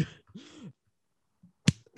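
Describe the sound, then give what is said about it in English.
A single sharp, loud smack, like a hand slapping a face, lands after a short voiced exclamation and a brief pause, followed by faint rustling. “Oh, cover up the slap marks.”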